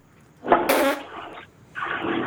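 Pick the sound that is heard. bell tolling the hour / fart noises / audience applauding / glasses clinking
fart noises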